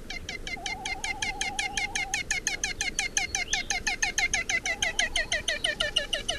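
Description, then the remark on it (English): A great frigatebird's (iwa's) hoarse cackle, a seabird of Hawaii: a fast, steady run of rasping pulses lasting several seconds, with a thin whistling tone underneath at the start. It is fairly loud, with no talking. “The best place to hear their vocalizations are on their breeding grounds, where the males attempt to attract females by blowing up a brilliant orange balloon-like pouch below their bills and uttering a hoarse cackle when the female comes near.”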